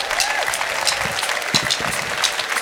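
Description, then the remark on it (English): An audience claps steadily, the dense patter of many hands filling the space at a fairly loud, constant level, with a faint murmur of voices mixed in. “Help us out with clapping for us.”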